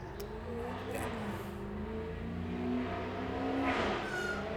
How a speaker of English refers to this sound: Sounds pretty good. It could be my neighbor. He's got a race car. That sounds pretty good.